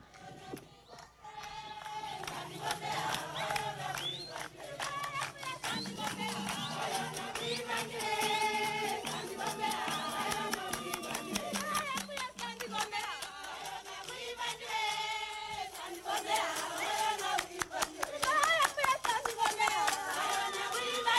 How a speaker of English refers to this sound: This is them rejoicing. This is them when we drive up in our Toyota pickup truck. This is what it sounds like. This is what it's like.